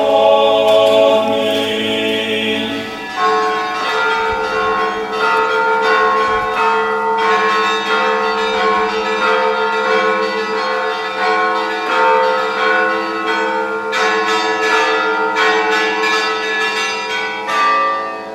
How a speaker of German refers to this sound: das Glockengeläut der Dreifaltigkeitskirche begleitet Svetlana und mich nach Hause